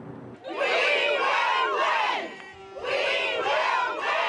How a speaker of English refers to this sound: As angry support workers chanted on the lawn of the legislature, inside words of conciliation from the premier.